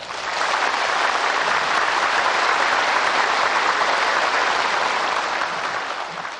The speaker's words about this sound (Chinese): 现在请各位来宾以最热烈的掌声恭请上清下海无上师为我们开示。